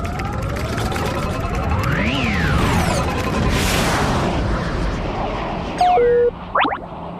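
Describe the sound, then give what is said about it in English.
Sci-fi spaceship crash landing on a planet: warbling tones swoop up and down over a steady rumble, a loud hissing whoosh surges midway, then a few sharp electronic beeps and chirps close it out. “We're going to crash on the planet.”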